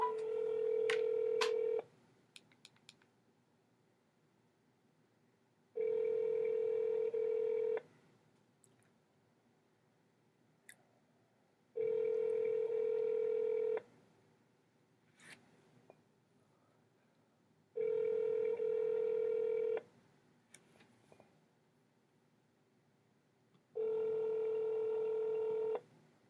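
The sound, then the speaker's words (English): A quick burst of touch-tone dialing beeps as a telephone number is called to reach Chris Dush, then a steady ringback tone repeating five times, each two-second hum followed by a few seconds of near silence. No one speaks. “Well, that's okay because I have another number to call for Mr.”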